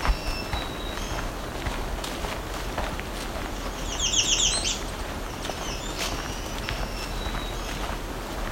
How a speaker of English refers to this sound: We're hearing a lot of black-throated green warblers and some American red starts right now.